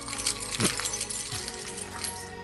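Car keys jangle and clink together in a bright, metallic rattle that lasts a couple of seconds, with scattered sharp chinks and no voices.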